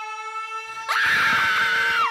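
A piercing, siren-like scream bursts in after a steady high electronic tone, holding loud and shrill for over a second before cutting off abruptly.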